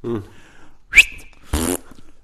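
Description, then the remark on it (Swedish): A person imitates a fart with their mouth as a sound effect added in editing: a short whistly squeak, then a loud, buzzing raspberry burst lasting a fraction of a second, with no talking. “Och sen i klippningen så är det någon som lägger på pruttljud.”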